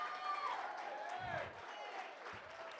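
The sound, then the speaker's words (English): An audience stands and claps steadily for their pastor, with voices cheering and calling out over the continuous, dense applause. “And y'all don't even know why you're clapping.”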